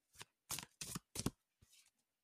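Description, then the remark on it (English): Shuffling of a deck of slippery tarot cards before a reading: four or five quick, papery riffling bursts with short pauses between them, fairly soft and with no voices. “So this will be my deck that I'm using in our readings for the foreseeable future. So I'm going to start shuffling here.”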